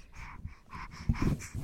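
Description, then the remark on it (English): A dog named Penelope pants heavily, rhythmic rasping breaths repeating about every few tenths of a second, with a few snorty, wheezy bursts near the end. “You hear some heavy breathing.”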